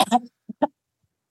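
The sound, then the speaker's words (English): Someone coughs and clears their throat in a few short, harsh bursts separated by brief pauses, trying to cough up what feels like a hairball in their mouth, with another rough cough starting at the end. “Take your time. Cough it up.”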